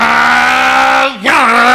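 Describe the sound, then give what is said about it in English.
A person vocally imitates the engine of a Porsche GT3 racing car: a loud, steady buzzing drone that briefly drops and then revs back up, like a gear shift. “Porsche is so loud. It's a GT3. It's one of those racing cars.”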